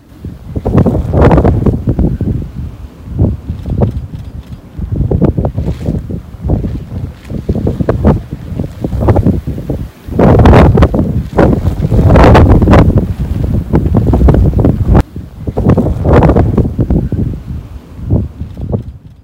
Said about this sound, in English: There's your tornado right there. Yeah, you can hear it. It really does sound like a whistle.